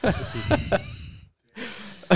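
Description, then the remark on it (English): Heavy, breathy rushes of air hitting a microphone, a long exhale broken by a few sharp puffs, then a short silence before another loud breath. “Is it me that's breathing into the mic? Yes, absolutely.”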